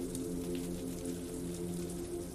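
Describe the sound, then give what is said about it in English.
Cold, steady rain patters on a surface, a dense, even hiss of drops with a low droning hum underneath, continuous and moderately quiet throughout. “There is beauty and comfort to be found in the contrasting swings between grays and blacks and vibrant hues between the cold rain and the fireside refuge in your cozy apartment.”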